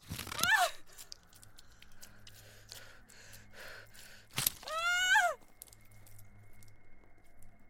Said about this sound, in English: They had the consistency of grapes as I chewed through them and swallowed.